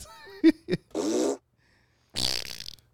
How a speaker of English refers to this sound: We're just going to fart.